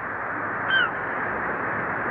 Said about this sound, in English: Those seagulls. Yeah, they're the tough ones. Never leave in winter. Find breakfast at tide's edge. They're the only ones who stay on.